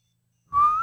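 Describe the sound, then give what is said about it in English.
After a moment of silence, a clear, loud whistled note starts and holds steady, rising very slightly in pitch, with no one talking; it is a whistle of the Hunger Games tune. “I said Hunger Games whistle.”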